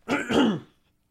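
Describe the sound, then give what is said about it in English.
A single throat clearing, a rough two-part rasp lasting about half a second before trailing off into silence, with no talking. “I do need to clear my throat again.”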